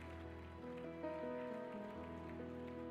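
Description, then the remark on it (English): An audience claps hands together to thank the Lord in a steady, dense wash of applause lasting the whole clip, with sustained organ or keyboard chords playing underneath and no voices. “Would you clap your hands one more time and thank the Lord?”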